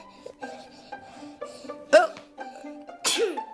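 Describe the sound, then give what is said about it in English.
A loud sneeze bursts out sharply, followed about a second later by another explosive sneeze-like burst, with only faint breathing and background hum in between and no talking. “That was quite the sneeze.”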